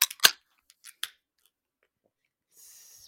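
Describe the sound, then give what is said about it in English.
A can of Spyglass Blueberry Cheesecake Sour Ale, from their hologram series, cracks open: a few sharp metallic clicks and snaps in quick succession, a brief pause, then a soft, steady fizzing hiss. No one speaks. “In 3, 2, 1, crack.”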